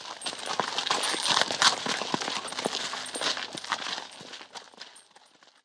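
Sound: horse hooves clip-clopping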